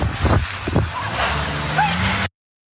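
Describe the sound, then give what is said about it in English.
A car engine drones and rumbles as the vehicle pulls away after a hit-and-run collision with another car, with a couple of brief high squeals and muffled voices in the background. “The Karens are driving away from an accident they were involved in.”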